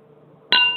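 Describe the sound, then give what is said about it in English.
A single bright clink of wine glasses touching in a toast before sipping a wine with Chardonnay and Pinot in it, followed by a clear, high ringing tone that sustains and slowly fades over a faint low hum. “Going in for a sip? I think we should. Cheers, man.”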